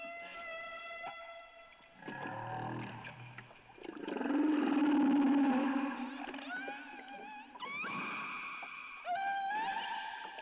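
Humpback whale song: a sequence of drawn-out, mournful moans and groans, rising whoops and bright harmonic squeals, one phrase following another continuously with no voices over it.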